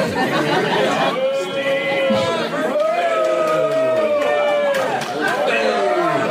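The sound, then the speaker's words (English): A loud, steady crowd roar at a show, with overlapping voices cheering and one sustained, wavering yell cutting through the din for several seconds. “No, but that's what the crowd sounded like.”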